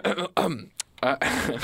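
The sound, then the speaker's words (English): Someone clears their throat several times, rough voiced rasps in quick succession ending in a harsher, breathy cough. “Cough button ready?”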